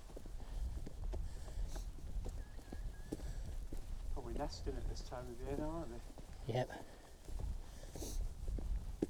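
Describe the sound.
Steady footsteps tap and clack on a stone flagstone path, its stones put in by the National Trust, in a regular walking rhythm, with people chatting over them and a bubbling curlew call rising briefly midway.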